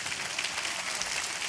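An audience claps together, a dense, steady wash of many hands at an even loudness for the whole short stretch, with no voices over it.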